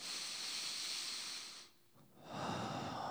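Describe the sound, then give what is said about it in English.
A long, deep breath drawn in with an airy hiss, a brief pause, then a full breath let out, clear with no talking. “Take a deep breath.”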